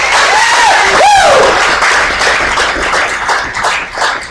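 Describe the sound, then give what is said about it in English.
A church audience breaks into loud, sustained applause, dense clapping filling the whole clip, with a couple of rising and falling whoops and cheers near the start before it settles into steady clapping. “Can I get a bigger clap than that?”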